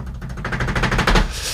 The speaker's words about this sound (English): Drum roll. Is that a drum roll? Sounds more like a motorbike. It should be a drum roll.